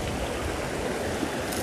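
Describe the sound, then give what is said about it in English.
A river rushes along with a steady, powerful roar, dense and continuous with no pauses, loud with no voices present. “If that's what you need today, then focus on the raging river. Focus on the sound, just almost scrubbing your skin clean.”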